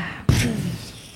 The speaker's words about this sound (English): People are gasping.